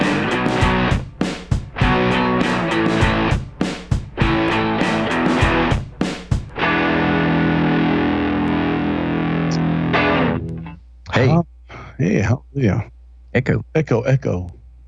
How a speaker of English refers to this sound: Echo.